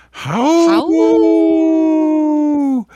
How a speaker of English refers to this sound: It's funny, … cat here in the studio, busted through the door and started, I don't know, it's not a howl. It's kind of a scary scream that she does now, but she was right on cue.